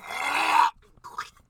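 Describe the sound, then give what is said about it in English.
A voice imitates someone at Walmart hawking up phlegm: a long, harsh, raspy throat-clearing rumble, then a brief pause and a shorter wet spitting burst. “They were coughing or hawking a loogie or something, and all I hear is...”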